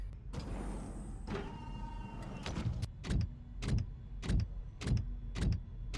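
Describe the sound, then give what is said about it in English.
A motorized main entrance door mechanism at a space complex whirs briefly as the door unlocks and slides open after a burst of noise, followed by a steady series of heavy mechanical clunks at regular intervals, fairly loud. “Astrid, unlock the main entrance.”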